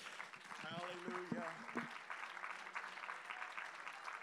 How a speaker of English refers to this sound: Now, would you, before you're seated, would you, for about 10 seconds, would you just clap your hands unto the Lord?